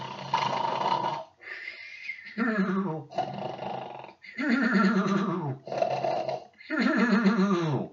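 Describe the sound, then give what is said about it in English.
A person imitates loud snoring, acting out a story character named Max who has gone sound asleep: a series of drawn-out, raspy vocal snores and snorts in a steady rhythm, with no other talking. “So Max went sound asleep, and he's snoring.”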